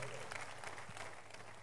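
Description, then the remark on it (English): An audience claps for Jesus together in a dense, steady burst of applause, the many hands blending into continuous crackling noise for a couple of seconds. “That clap can be better for Jesus.”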